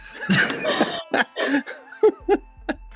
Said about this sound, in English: As she's going in for the swing, I'd like to cough very loudly.